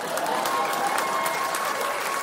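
Steady, dense applause from an audience of parents clapping to admit that, as the tooth fairy, they left money under the pillow but forgot to take the tooth, a continuous wash of many hands clapping at an even loudness, with no voices rising above it.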